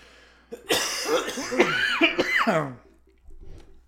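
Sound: coughing fit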